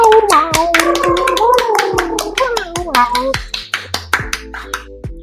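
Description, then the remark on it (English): Hands clap sharply again and again in a quick, uneven rhythm for several seconds. A wavering, hummed or sung tone runs under the first half, and the claps continue alone at the end. “Like it, like yes, hold on one time, let's both do it. You clap all me out.”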